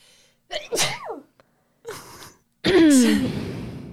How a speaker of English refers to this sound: Sorry, it's all kinds of sicknesses over here. I'm spreading my illness. Sorry I sneezed in your direction